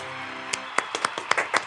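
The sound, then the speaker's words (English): Several sharp hand claps, about eight, come in a quick, uneven patter over a low background hum. They are crisp and moderately loud, with no talking. “Joanie, clap. You're so rude.”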